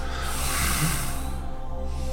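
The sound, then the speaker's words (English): A long, steady rush of air drawn through the nose during a root chakra breathing exercise, a broad airy hiss that swells and then thins out toward the end, over a faint low hum. No one speaks. “You want to hear the air flowing through your nostrils.”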